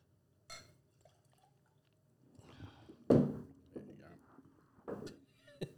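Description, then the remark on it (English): Water splashes and trickles into a glass for a quick rinse, with a sharp clink of glass midway and a few shorter splashes after, with faint voices underneath. “The whole glass out in this one. Sells a little rinsey rinse.”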